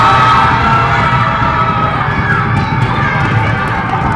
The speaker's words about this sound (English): I just want to go over to the wall, everybody, and just start banging on the wall and just scream just for a few seconds. Can we do that? Yeah, let's just do it. No, hold on, all at the same time. There we go. Scream, scream.